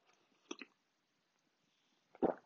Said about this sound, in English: So now I'm going to take a quick coffee sip